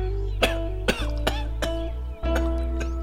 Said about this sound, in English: More coughing. More blood.